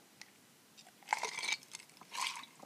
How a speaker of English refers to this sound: But all I know is I can drink this shit and I'm happy about it. And it's so fucking good. So, yeah. That's what I've been, like, obsessing over lately, and I feel like I need to take another sip now that I've been talking about it.